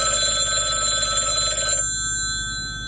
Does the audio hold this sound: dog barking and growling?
no